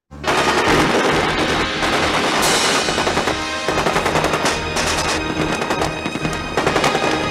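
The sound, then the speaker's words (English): Sustained bursts of machine gun fire rattle continuously for several seconds, loud and dense, with rapid overlapping shots and no voices. “And then they're just like wildly firing as they scream, like, ah!”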